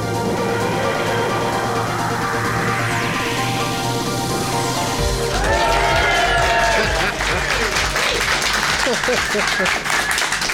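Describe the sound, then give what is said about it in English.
A live crowd bursts into sustained applause, with dense clapping and cheering at a steady loud level for about ten seconds and voices mixed in beneath the noise. “Because I didn't even tell you you had to clap. I just put my hands in the air.”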